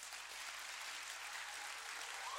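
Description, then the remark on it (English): A crowd claps steadily, a dense wash of many hands applauding together at once, sustained and even for a couple of seconds with no voices over it. “I thought you would clap for Jesus.”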